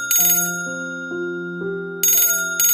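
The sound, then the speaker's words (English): A telephone rings at about 8:45 on a wet morning with a short melodic tone sequence stepping through several notes, punctuated by bright, trilling bell-like bursts at the start and end. Loud, with no talking. “It was about 8:45 on that wet morning when the phone rang.”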